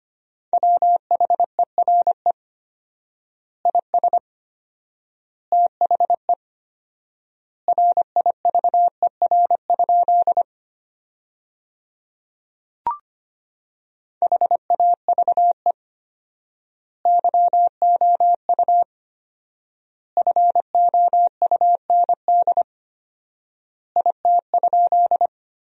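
Morse code sent at 25 words per minute with 4x word spacing, spelling a sentence built from the top 300 words: a steady mid-pitched tone keyed into rapid dots and dashes, grouped into words separated by long pauses, with a brief click midway and no voices.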